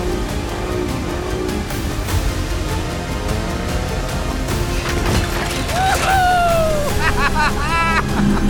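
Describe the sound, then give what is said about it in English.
A motorboat engine racing at full throttle, a loud, steady roar with rushing water noise and a pitch that climbs near the end, while voices call out over it. “Sorry, this boat is more responsive than I thought. It's getting fast. Don't lose it! I'm trying! The throttle's at the max!”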